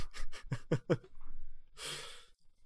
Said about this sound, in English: Okay. I will stay closer to the microphone. Hopefully the listeners do not mind the sound of my breathing.